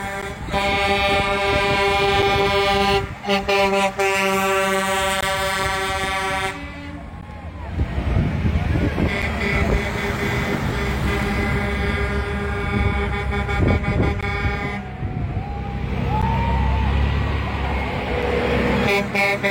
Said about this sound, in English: This line of trucks is like never ending.